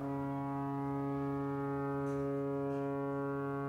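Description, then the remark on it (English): A deep foghorn blasts in one long, steady, droning tone, loud and unbroken, with a rich stack of harmonics and no pauses or voices. “The foghorn blew.”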